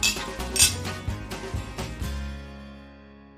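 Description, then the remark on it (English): Several glasses clink together in a toast in quick succession, bright, with the last touch leaving a ringing tone that fades away. No one speaks. “Well, I think it's a cheers to that. Let's. Cheers.”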